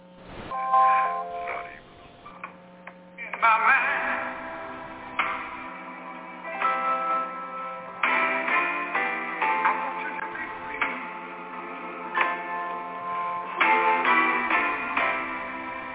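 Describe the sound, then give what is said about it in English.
Bright bells ring out in a song's intro, chiming in clusters of ringing notes over a low sustained tone, with a muffled, slightly lo-fi quality and a brief spoken voice. “Oh, bells.”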